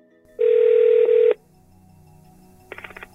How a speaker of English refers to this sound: But in the end, I decided to phone him up.